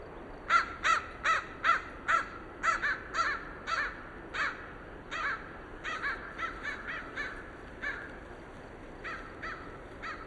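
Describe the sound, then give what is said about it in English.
A pair of crows circle overhead at a rocky ledge off the Mackenzie Scenic Highway, at the Three Sisters Wilderness boundary, in late afternoon with wind pouring down: harsh caws repeat in quick bursts of several, some overlapping as the two birds answer each other, over a faint breezy background. “A pair of crows circle above me.”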